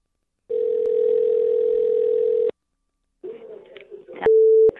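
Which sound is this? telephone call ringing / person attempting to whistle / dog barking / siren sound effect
telephone call ringing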